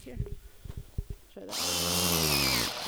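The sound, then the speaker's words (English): A few brief knocks and handling sounds, then a power drill starts up and whirs steadily with a high, buzzing whine as a woman drills a small hole into a tree to tap it for sap. “She drills a little hole into the tree.”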